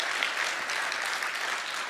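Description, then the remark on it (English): A crowd claps together in steady, dense applause for a church staff member called up to the front, a broad wash of many hands heard at moderate loudness throughout, with no voices standing out. “Yeah, let's give Kelly a round of applause.”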